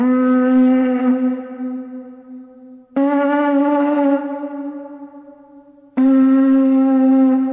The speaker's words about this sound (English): I'll tell you what's impressive about that, will I, PJ? The fact that that's an 18,000-year-old horn and he managed to get a bit of reverb.